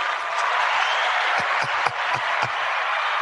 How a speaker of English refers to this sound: Round of applause.